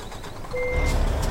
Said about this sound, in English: I might as well quickly fix the truck. Let me drive into the mechanics. Come on.